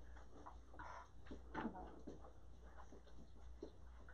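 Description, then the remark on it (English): Chairs being moved and rearranged: scattered scrapes, knocks and clunks, with one louder bump partway through, over faint murmuring voices. “Playing Tetris over there. Yes. With all the chairs.”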